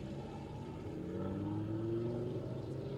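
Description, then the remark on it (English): A Viper sports car's engine hums steadily, its tone rising slightly as it accelerates past at moderate volume, with a child in the car; no voices. “This Viper could be really loud.”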